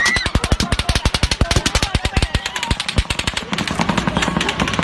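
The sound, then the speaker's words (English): Fireworks popping in a rapid, dense string of sharp, loud bangs, crackling almost continuously for several seconds before thinning into scattered pops. “It's fireworks.”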